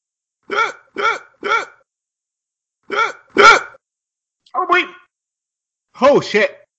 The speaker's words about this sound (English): There was so much spice on there. Oh, God. Oh, the hiccups are coming.